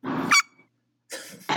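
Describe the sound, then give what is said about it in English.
A person imitates a dog with two short, loud barks separated by about a second of silence, in a gruff, throaty voice. “we were introduced to Kojima's dogs, and if you remember what they sound like, it's something like”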